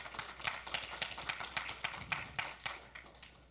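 A crowd gives a hand clap for Jesus in the morning, clapping steadily for several seconds, a dense patter of sharp, crisp hand claps with a few louder ones standing out, at moderate volume with no voices.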